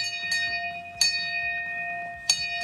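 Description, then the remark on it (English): A handheld bell is struck three times at uneven intervals to mark a patient's last radiation treatment, each clang sharp and bright, its clear metallic tone ringing on between strikes, with no voices. “Ring the bell three times.”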